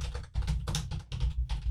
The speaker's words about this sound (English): You can hear me typing on this show and others.